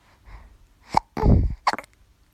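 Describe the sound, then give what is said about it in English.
A loud, deep burp lasting about half a second, with a sharp click just before it and a couple of quick throaty bursts right after. “Yeah, just burp heavily like that.”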